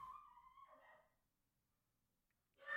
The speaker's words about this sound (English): My dog's filling the dead air.